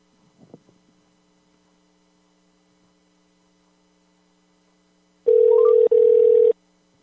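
A faint electrical hum runs under near-silence, then a loud, steady telephone dial tone sounds for about a second, breaks briefly, and resumes before cutting off, as a dropped call is being redialed. No one speaks.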